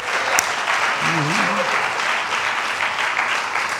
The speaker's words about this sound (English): Now give them a good clap offering. Hallelujah. Hallelujah. Hallelujah.